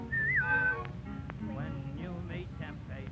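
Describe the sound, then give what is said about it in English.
A short, clear whistled phrase rises and dips at the start, loud, then gives way to a voice talking over a low, steady background rumble. “When you get in trouble and you don't know right from wrong, give her with the whistle.”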